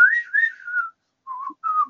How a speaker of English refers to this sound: the theme song from Good, the Bad, and the Ugly, which is very famous. Very bad whistle of that.